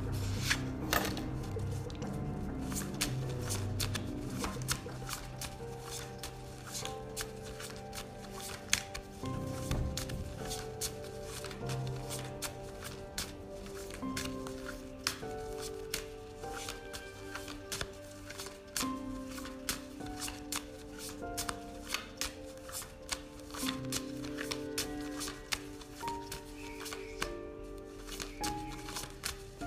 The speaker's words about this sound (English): Some of the shuffling, and then we can check out the fallen cards.